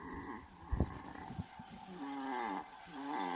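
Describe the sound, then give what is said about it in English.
A cat snores loudly: rough, rumbling breaths with a raspy, buzzing tone, starting with a sharp snort and then settling into long, drawn-out snores. No one speaks. “Okay, so the title of the video is "Cat Snores So Loud We Can't Sleep," and it's about a cat who woke up its owners.”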